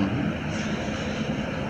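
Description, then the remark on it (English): A helicopter drones overhead, a steady, loud, low rumbling whir that fills the whole short stretch without fading or breaking. “It's a fucking helicopter over us.”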